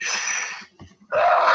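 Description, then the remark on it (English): A loud sneeze: a sharp, breathy intake, a brief pause, then a forceful, noisy burst of air, with no talking. “That big ass sneeze.”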